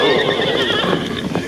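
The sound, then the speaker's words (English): The horse Silver, urged forward, whinnies loudly, a long wavering neigh with bright harmonic pitch, while faint hoof clops sound underneath. “Rein in your horses, men.”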